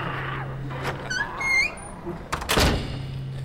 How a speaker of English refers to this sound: The door is shut